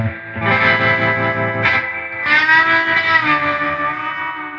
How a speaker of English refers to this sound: We have a reverb pedal plugged into it to give it some more reverb. If you want to hit that for me real quick. This is with a lot of reverb.